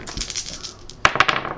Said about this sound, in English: My dinosaur score is 4. So you roll 4 dice.